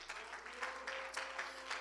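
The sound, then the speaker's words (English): A church audience claps their hands once again after a prayer, a dense, steady stream of applause that swells in rough rhythmic pulses, with a faint sustained tone humming beneath it. “Could you clap your hands once again?”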